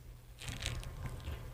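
A crisp bite into a crunchy strawberry seasoned with Old Bay, followed by a quick run of crackly chewing crunches over a low background hum, with no talking.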